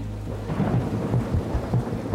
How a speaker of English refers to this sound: We received a downpour of rain. I couldn't even see to walk out the door anyway to find my car.